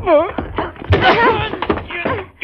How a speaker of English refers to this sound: You made me fall.